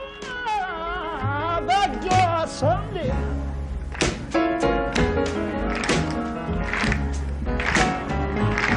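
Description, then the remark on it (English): An audience claps along to a live performance in England, sharp repeated claps landing somewhat unevenly over loud music and a singing voice. “The clapping is way off, by the way.”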